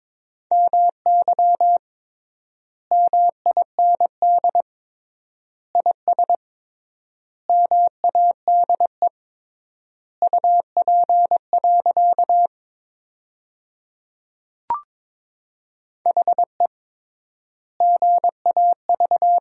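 Morse code at 22 words per minute with triple word spacing, sending sentences made from the top 500 words: a single steady mid-pitched tone keyed into rapid dots and dashes, in short word groups separated by long pauses, with one brief click midway and no voices.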